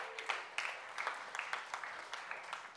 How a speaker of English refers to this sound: So how about you give yourself a hand for what you guys are doing for this community of Kamaki? Seriously, just clap. Give yourself a hand.